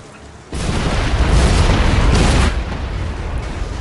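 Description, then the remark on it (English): A loud video game explosion bursts in suddenly with a deep boom, then rumbles and roars for a couple of seconds before easing into a lingering low crackle. No one speaks. “And you see like the shockwaves from the explosion carry color with them.”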